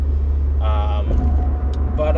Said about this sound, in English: I think about that sometimes as I'm driving to work in this rain.